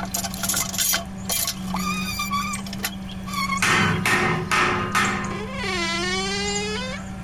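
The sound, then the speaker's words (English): A heavy solid oak door wrapped in iron is wrenched loose and pried off: long, wavering creaks and groans that bend in pitch, broken by harsh scraping bursts and cracks, with a low steady hum underneath. “Hey, help me get this door off.”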